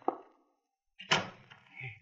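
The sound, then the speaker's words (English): A back door clicks open as a man goes out, a moment of quiet, then it bangs shut with a heavy, rattling thud, followed by a faint lingering rumble. “He went out the back door.”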